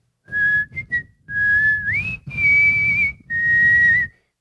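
A person whistles a short melody, with clear, bright tones gliding between notes across four phrases separated by brief pauses, over a faint low background rumble. No one speaks.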